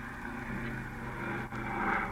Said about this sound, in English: Gee, there it goes into the air. What a beautiful takeoff. Yep, they'll be in New York in 10 hours.